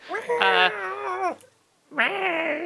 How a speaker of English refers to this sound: Cat's got to be in my office tonight, and fair enough. She just won't shut the fuck up.